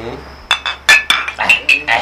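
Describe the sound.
Glass bottles clink together in a toast, a quick irregular run of bright, ringing taps, with faint voices murmuring underneath.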